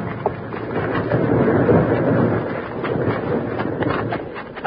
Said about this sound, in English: Started by the bank bandits, the big rock smashed down at them at tremendous speed.